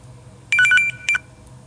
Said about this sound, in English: Sorry, I had a phone call.